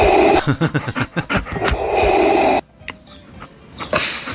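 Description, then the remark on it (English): A person imitates the heavy breathing of Pixie, a dog: rapid, rhythmic breathy huffs, then a sustained raspy exhale that cuts off abruptly, followed by a few quieter breaths. “And she heavy breathed. Oh, wow. Which is a bit like this.”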